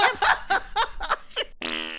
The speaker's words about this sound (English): I mean, we'd still need her to edit the farts, I'm sure.